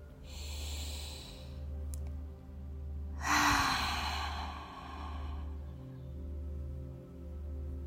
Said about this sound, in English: Breathe out with your mouth open and let go of all the air and with it of all stress from your body.